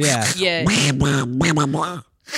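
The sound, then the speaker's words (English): A person does a Donald Duck voice impression, a rapid run of raspy, quacky squawks delivered loud, with a brief pause before a final burst. “And let's do a Donald. Donald Duck is the hardest one.”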